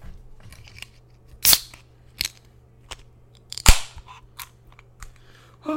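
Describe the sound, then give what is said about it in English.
A few sharp metallic snaps and clicks, fairly loud, as a can or bottle of sour beer for SunLab Brewing Company of Miami, Florida is cracked open, with small handling clicks in between and no talking. “Let's crack this bad boy open.”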